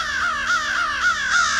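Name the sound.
crow cawing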